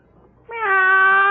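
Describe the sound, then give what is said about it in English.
A man's voice imitates a cat's meow outside a house at night: one loud, drawn-out, nasal call that starts abruptly after a quiet moment and holds steady until the end, with no other talking. “Now, I meow twice.”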